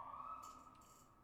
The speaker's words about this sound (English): And so, like, I know there's a siren. I can hear the siren. It's barely registering, though. Just gonna hold for the siren, pack a bowl.